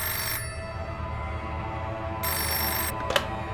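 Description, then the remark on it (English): A steady electronic ringing like a telephone bell, coming from a magical sending stone, with two louder bursts of ring at the start and partway through, then a brief click near the end. No one speaks. “What is that mysterious ringing noise coming from the sending stone?”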